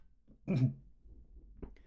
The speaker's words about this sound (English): I gotta cough again. Sorry.